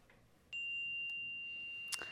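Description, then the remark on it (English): A single meditation chime is struck to open a Recovery Dharma meditation practice, giving a clear high, pure tone that rings on steadily and softly, with a brief faint rustle near the end. “Let's go ahead and invite the chime to sing, and then we'll fully arrive to our practice today.”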